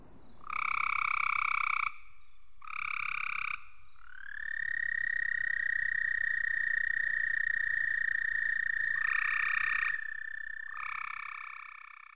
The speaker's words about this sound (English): Let's start with this recording of an American toad.